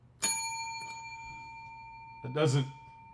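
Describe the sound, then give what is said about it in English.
A single bright strike of a well-worn TV studio bell rings out sharply, its metallic tone sustaining and slowly decaying, followed a couple of seconds later by a brief burst of voice. “the bell in the ESPN studio is, it's been through some shit”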